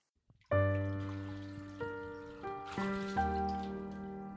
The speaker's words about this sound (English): The quiet, sharp, pinging water filled the bathroom with its own peculiar music, just as the 2 dozen votive candles cast their effusive glow like a cocoon about the bathtub.